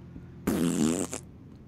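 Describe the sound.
A single loud, buzzing raspberry blown with the lips imitates a fart as a Dwight Howard impression, lasting just under a second before cutting off into quiet.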